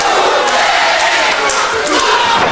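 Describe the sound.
A large wrestling crowd chants loudly and continuously during a match as a wrestler applies an arm bar, a dense roar of many voices punctuated by sharp rhythmic accents roughly every half second.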